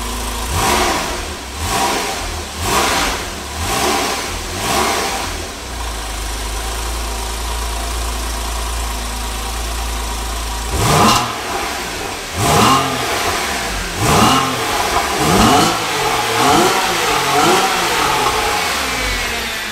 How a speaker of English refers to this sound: Now, let's listen to the stock exhaust revving at 2,000 RPM and then 4,000 RPM.